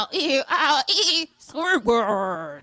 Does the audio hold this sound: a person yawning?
no